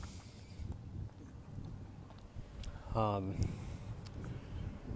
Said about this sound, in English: But yeah, so it's probably really windy. You guys are probably like, what's all that wind? And what was that sound? A car just passed me.